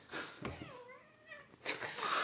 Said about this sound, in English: This cat is terrorizing us. Grab her.